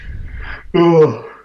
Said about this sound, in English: Sorry, man, I'm just having a little yawn there.